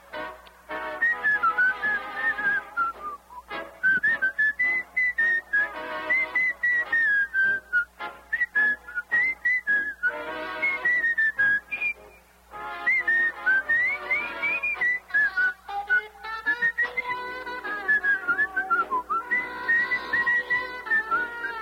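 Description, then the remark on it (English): Someone whistles a wandering melody for about twenty seconds, the pitch sliding and warbling between short breaths, fairly loud with a faint steady hum underneath. “And he used to whistle with it. Try whistling this.”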